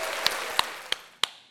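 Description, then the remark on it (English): Four sharp, crisp claps from the audience land at a slow, steady pace, evenly spaced about a third of a second apart, over a faint hiss of background noise. No one speaks. “It's real claps. I heard you”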